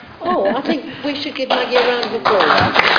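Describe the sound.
A person speaks, then a round of applause from a group at a council committee meeting breaks out halfway through, dense and steady, growing louder toward the end while voices continue underneath.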